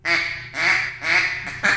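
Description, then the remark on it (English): A duck call blows a flag quack: three drawn-out, raspy quacks in steady rhythm, followed by two short clipped notes. The calls are loud, with no talking. “Flag quack.”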